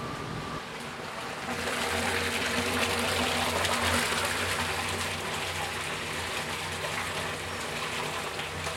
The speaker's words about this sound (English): And I'm going to put another 100 liters of water in what we call the batcher. And what it does, it batches 100 liters of water into the pot, hot water.